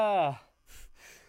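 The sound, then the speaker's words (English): A voiced, rising 'ah' breath gives way to a couple of sharp, breathy bursts, a quick pair of sneezes from a person's fit of violent sneezing, with the second one softer than the first. “No, sometimes I have violent sneeze fits.”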